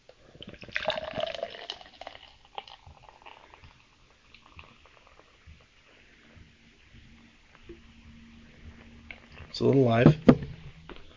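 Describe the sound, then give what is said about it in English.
A fizzy beer with a watermelon smell is poured into a cup twice: a short gurgling pour at the start, then a louder, splashing top-up near the end, with quiet voices murmuring in between. “It's a little fizzy. Let me top you off.”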